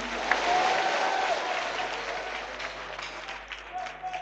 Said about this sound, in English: Clap your hands and say, yeah, yeah.